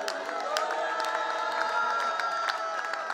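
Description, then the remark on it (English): An audience claps and shouts hallelujah together, a loud, steady wall of many voices crying out with sharp hand claps scattered through it, never letting up for the whole stretch. “So let us clap and shout hallelujah.”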